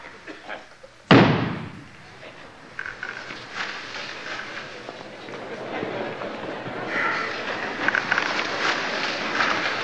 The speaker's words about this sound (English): So from the last clip, the gunshot came from Judge Rayford, played by Jack Warden, who is a more fair judge than Fleming, but he's also a bit nuts.